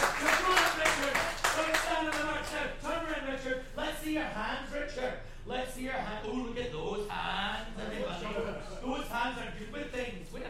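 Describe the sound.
A show audience claps for an audience member invited up on stage, loudest and densest at the start, then the applause thins into scattered claps while someone talks over it.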